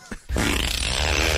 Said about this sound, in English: Here I have your fart new. Fart sounds make me laugh no matter what situation. I have your new act. Here it is.